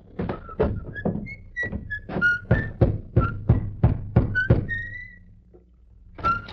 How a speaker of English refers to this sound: He rode up to a small white cottage, dismounted, slapped dust from his army uniform, then rapped on the door.